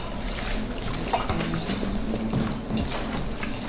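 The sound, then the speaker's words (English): Steady wet squishing and slapping of hands kneading seasoning, including salt and chopped scotch bonnet pepper, into raw oxtail, with a faint low hum in the background and no talking. “So right now we're gonna rub it up. Make sure everything seasoned up properly.”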